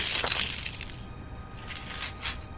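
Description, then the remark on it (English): A bright, crunchy shattering burst as a seashell is smashed open, followed by a few smaller scattered crackles and clinks as fragments settle. Fairly loud, with no talking. “Okay, but it's such a pretty shell.”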